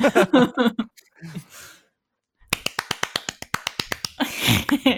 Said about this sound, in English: I love watching my audio in Audacity when I clap because it's just like spik, spik, spik, spik, spik, spik, spik, spik, spik, spik.